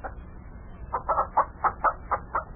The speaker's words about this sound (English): Had the fields plowed, planted some crops, stocked up the farm with livestock and chickens. Huh, the chickens all over the place here.